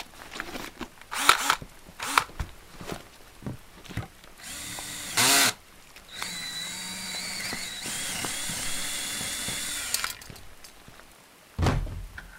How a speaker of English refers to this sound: Give me a sec. I still need to drill the lock.